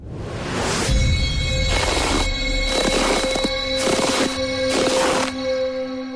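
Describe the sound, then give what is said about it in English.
A handful of crunching footsteps in snow at a steady walking pace, loud, with a constant faint hum running underneath and no one talking. “So, let us go with today's first set of Footsteps in the Snow for Foot Solutions.”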